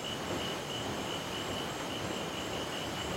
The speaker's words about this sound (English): Further down the funnel's tube, is a steady rumbling sound caused by the boat's engines. It isn't loud or distracting, but rather adding to the environment.